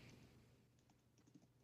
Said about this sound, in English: I love to hear him typing in the background.